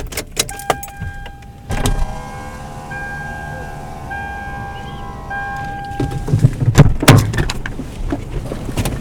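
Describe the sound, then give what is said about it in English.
A car door opens with a few sharp clunks, a steady electronic chime rings for several seconds, then a burst of rattling and a heavy thud as the door shuts. “My car sucks, I'm sorry. My driver's side door does not work, so I do this.”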